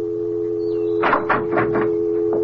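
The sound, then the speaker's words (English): A house door opens as someone walks in, with a quick run of four or five rattling clunks, over the constant hum of a furnace heating system, with a faint phone dial tone briefly sliding in beforehand. “And see what happens when I walk in that door.”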